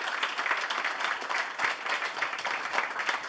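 An audience at a comedy festival show applauds steadily, a dense wash of many hands clapping at an even, fairly loud level throughout, with no one speaking over it.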